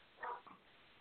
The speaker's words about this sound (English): A dog barking in the background.